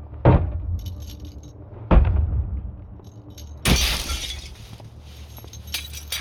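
Three heavy blows strike a plexiglass panel in a van, two sharp thuds followed by a louder crash with a harsh, sustained crackling rattle as the panel gives way. No one speaks.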